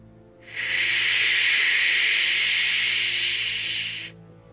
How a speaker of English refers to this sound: The screams begin to fill the space of your dream until it is just the sound of incessant static.